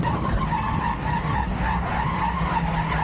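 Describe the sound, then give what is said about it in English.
A truck towing a trailer at about 50 miles an hour brakes hard with ABS on a slippery spot, tires skidding and squealing in a sustained, loud screech over a rumbling engine, lasting the full few seconds with no voices. “slammed down the brakes, and there was no fishtailing.”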